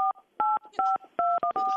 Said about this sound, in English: I'll do it again. Hold on. It just sounded like dial tone. Ma'am, I'm going to hang up. This doesn't... Did you get it? These aren't numbers. Those aren't numbers. They're dial tones.